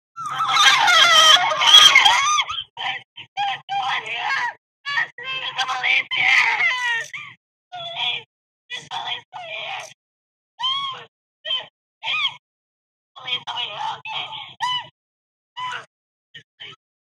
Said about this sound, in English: The following is audio that I was given by a parent of kids from across the room where the kids were murdered. These children survived. This is a shrill screaming of kids trying to get out while their classmates are being murdered.